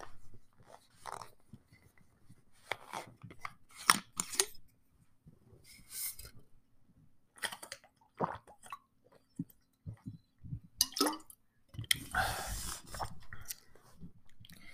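Mouth sounds of someone drinking water, with a series of wet gulps and swallows in an irregular rhythm and a louder burst near the end, no talking.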